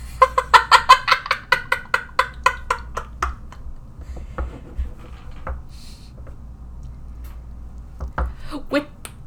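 A hoatzin (Opisthocomus hoazin) gives a rapid run of harsh, wheezy croaks, loud and rhythmic at first, then breaking into scattered rasping calls over a low rumbling background.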